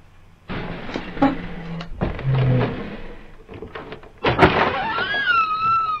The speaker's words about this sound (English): Much appreciation for finally opening the door.